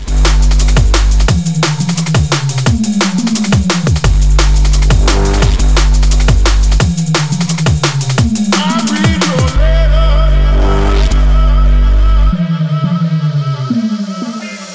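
A loud electronic dance track remix with a pounding kick drum, sliding bass notes and crisp hi-hats, shifting midway into a breakdown with bright synth textures before the beat returns. No voices.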